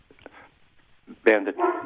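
A dog named Bandit barks in a loud, sharp burst near the end, following a stretch of faint, scattered whimpers and low background sounds.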